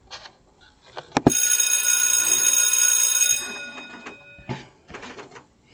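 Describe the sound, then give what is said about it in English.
A bell is struck once after a few soft clicks and knocks, ringing out bright and metallic with shimmering overtones for about two seconds before fading, followed by more faint rustling. “When you hear that bell, that means we are back ready for the chat today.”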